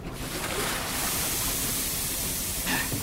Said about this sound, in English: Go ahead and dump the water in the furnace.